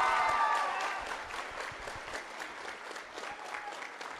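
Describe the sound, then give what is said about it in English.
A crowd applauds steadily for a speaker being introduced at a morning talk, a dense wash of many hands clapping that starts strong and tapers slightly, with some cheering or voices mixed in near the start. “Please give him a huge round of applause.”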